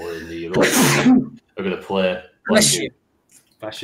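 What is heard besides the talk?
sneeze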